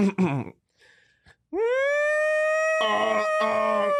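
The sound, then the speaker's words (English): Voices mimic a siren: a wail swoops upward and holds a loud, steady pitch for a couple of seconds, with another voice joining near the end. Brief vocal sounds come just before. “Yeah, he did have the siren description. Can we do it?”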